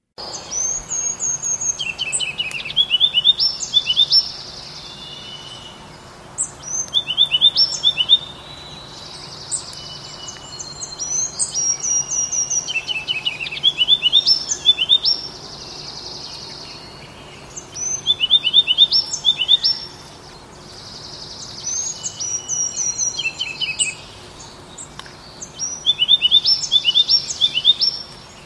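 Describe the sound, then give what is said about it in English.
A ruby-crowned kinglet, a small bird, sings repeated bright, high, rapid warbling phrases in bursts every few seconds, over a steady background of insect trilling and other faint birds singing. No one speaks. “So that was a ruby-crowned kinglet.”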